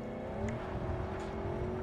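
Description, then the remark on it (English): A car engine in a video game hums steadily, its pitch climbing gradually as a man gets in and the car pulls away and accelerates for a drive, with no voices over it. “And now he's getting in the car. And we're going to go for a drive.”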